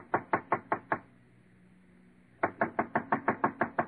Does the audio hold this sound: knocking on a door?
yes